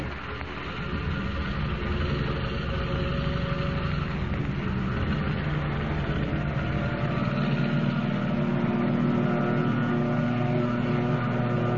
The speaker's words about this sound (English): Rising from the water like some monstrous seabird, the plane roars into the darkness, headed for the open ocean.